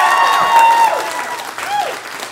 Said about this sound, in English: Hey, welcome to the show. Give yourselves a round of applause for being here.